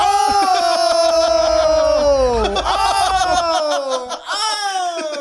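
A loud, piercing, harsh scream held for several seconds, its pitch sagging briefly midway before surging back, with no talking over it.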